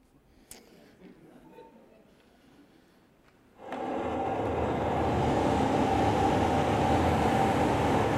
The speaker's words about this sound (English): You know, it shouldn't be too scary, but it's going to be loud. So let's go into the storm.